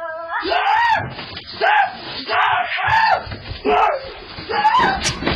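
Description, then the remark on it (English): A cornered cat yowls in a series of about five drawn-out, wavering wails, each rising and falling in pitch, loud and harsh, with brief pauses between cries. “That's when a cat makes that sound. He's cornered too.”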